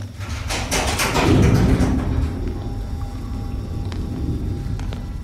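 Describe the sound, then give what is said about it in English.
A faulty heavy door grinds and rattles open with a low scraping rumble and a few sharp, loud clanks, then settles into a quieter mechanical hum with faint ticks. “Looks like we should replace that door.”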